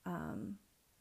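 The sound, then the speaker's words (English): A single short meow from a pet cat, about half a second long and fairly loud, with a slightly falling pitch, followed by quiet room tone. “And there's the cat again.”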